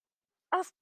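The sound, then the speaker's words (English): A person imitates a dog with one short, gruff bark-growl as a vocal ad-lib, standing alone against silence. “He's growling.”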